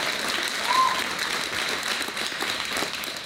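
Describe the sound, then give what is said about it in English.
A crowd applauds steadily, many hands clapping together in a dense, continuous wash of sound that holds at an even level throughout, with no voices breaking through. “So, yeah, you can go ahead. You can clap.”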